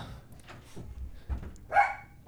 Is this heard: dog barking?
yes